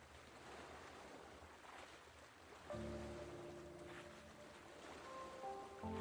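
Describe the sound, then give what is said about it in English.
Continuous splashing and gurgling water against a sailboat cutting through a gentle swell at the center of a lake, with a steady wash of wind and surf as a gentle breeze fills the sails; partway through, a low tonal hum or creak rises and lingers beneath the water. “The splash and gurgle of the water as the boat cuts through the gentle swell.”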